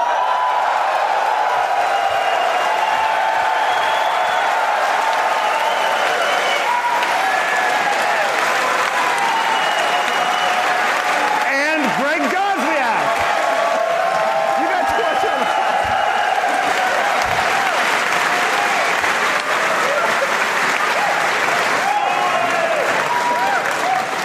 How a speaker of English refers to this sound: That was more applause than the Mac Pro guy.